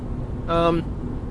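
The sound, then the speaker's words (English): A steady low engine rumble of a car idling in a road traffic jam, continuous, with a brief voice-like tonal sound rising over it for a moment midway. “So I'm standing in traffic right now and I can see the person causing it.”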